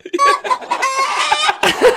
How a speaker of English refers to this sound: you played the chickens again. Yeah, oh, sorry. Oh, that was my bad. Oh, my God. I do that every time.